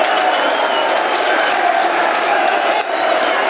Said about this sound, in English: Ollie Burke leads the field to good applause.